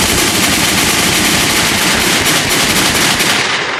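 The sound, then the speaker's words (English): Loud, rapid bursts of gunfire rattle continuously, shots piling into a dense, nonstop barrage like automatic weapons firing, with no voices present. “Gunshots.”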